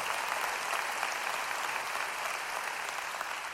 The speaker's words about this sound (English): Come on, can you give God a hand clap for that?